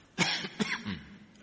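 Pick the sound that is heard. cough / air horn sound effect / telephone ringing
cough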